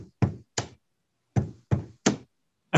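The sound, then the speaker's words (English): Someone bangs on a playground slide outside an apartment building: about six sharp, hollow thumps at uneven intervals, fairly loud, with no talking. “Yeah, I'm banging on the slide.”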